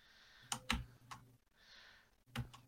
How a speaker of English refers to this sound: Now, anyways, the point is, I mean, it's a nice keyboard. I mean, it's even a mechanical keyboard.